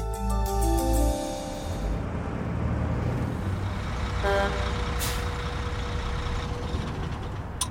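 Busy truck yard ambience: a heavy engine rumbles and revs low, with a short hiss of air brakes and faint tonal beeps of reversing vehicles, steady and fairly close, no voices.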